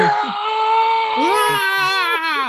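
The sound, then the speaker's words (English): A voice imitates an anime-style power-up scream for a character striking a Dragon Ball Z power pose, a loud, sustained, strained yell that holds steady, then swells and rises in pitch, continuing intensely for a couple of seconds. “When he does the, oh my God! You did a great sound effect for that.”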